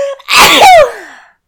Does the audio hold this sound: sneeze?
yes